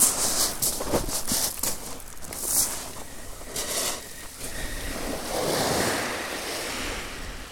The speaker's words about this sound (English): This is just about as calm as I've ever seen the sea at Chesil Beach.